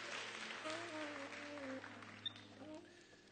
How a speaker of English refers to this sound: If you would, give the Lord a hand clap as you take your seats.